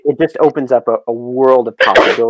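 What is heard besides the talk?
sneeze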